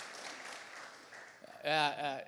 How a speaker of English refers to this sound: Yeah, you can clap. It's exciting. It's a really exciting time.